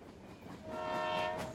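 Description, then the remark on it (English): A low railway rumble builds, then a steady train horn tone swells in and holds, growing louder as the train starts rolling very slowly out of a station. No one speaks. “The wagon begins to roll very slowly, and you take a deep breath of relief because you know you are in for a long, relaxing ride.”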